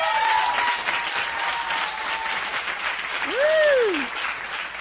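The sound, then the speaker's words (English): A crowd applauds the Thailand team with dense, steady clapping for several seconds, and a single rising-then-falling whistle cuts through the applause toward the end. “Let's clap it up for the Thailand team.”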